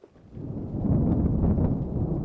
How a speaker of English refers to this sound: Sorry about the noise. It seems there's a storm brewing.